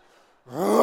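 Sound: person imitating a roar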